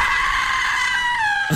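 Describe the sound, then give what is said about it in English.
A man in a film scene lets out a single sustained, loud scream of fright as he meets a pig, lasting over a second, strained and high, cutting off abruptly at the end with no talking. “If there's an Oscar for a scream, he deserves it.”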